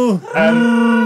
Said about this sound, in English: But Lucas originally envisioned the first film as a film entirely about Wookiees. And this creature that he designed, nothing else, just Wookiees screaming for 90 minutes. That was his original plan.